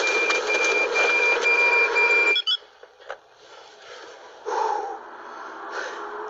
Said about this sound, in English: Something tripped an alarm that they're running after.